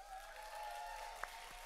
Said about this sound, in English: And so I want to give a little whoop whoop and clap to a guy called